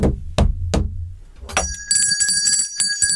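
Three dull, heavy knocks, then a bright bell starts ringing, struck again and again so its high shimmering tone keeps sustaining. Fairly loud, with no voices.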